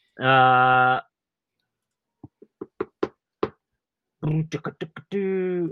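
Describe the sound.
A short burst of irregular keyboard typing as the word Guam is typed in as a guess, a handful of sharp taps spaced unevenly, with a brief sustained voiced tone before the typing and another at the end.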